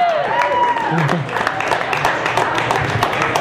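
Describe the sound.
A crowd applauds steadily, with many overlapping claps forming a dense crackle, mixed with cheering voices and a brief rising whoop near the start.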